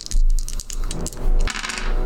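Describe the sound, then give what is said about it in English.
Several dice clatter and tumble across a hard table, a burst of sharp clicks and rattles that stops, starts again, then settles over about two seconds. The roll comes to 18 damage. No voices. “Ooh, good rolls.”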